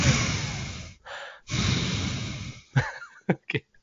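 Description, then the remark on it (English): Loud heavy breathing blasts straight into a microphone: long rough exhales, a short inhale between them, then a few quick sharp puffs and snorts at the end. “stop breathing into the microphone.”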